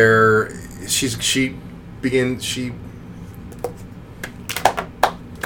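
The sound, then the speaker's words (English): A few sharp, spaced-out claps ring out in an uneven slow clap, following earlier bursts that blend with drawn-out vocal sounds and a low background hum. “Is that an obnoxious slow clap?”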